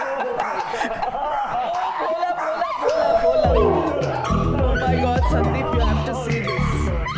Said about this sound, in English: That was … and some of her 15 dogs. … is the founder of All Creatures Great and Small, a non-profit sanctuary in Haryana.